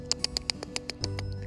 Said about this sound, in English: Hi, birdies. How are you today? Do you have plenty of bird feed? You need some more? I sprinkled it everywhere for the birds to come and enjoy.